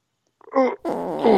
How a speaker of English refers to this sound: Oh, God. Ooh. God, that... I'm not feeling so good. That really stinks, man. Did you fart? Yeah. Shouldn't have ate Taco Bell after I got out of the hospital.